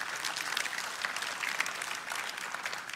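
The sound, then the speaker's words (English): An audience applauds steadily for about three seconds, a dense, even patter of many hands clapping at moderate volume with no voices over it, during a church sermon on the story of Jonah and Jesus. “We can applaud that.”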